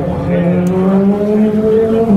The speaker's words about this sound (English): We'll be in the stand in a moment as the cars blast past us. Just to let you know where we are, we're walking by the Ford chicane at the moment, just past the entrance to the pits.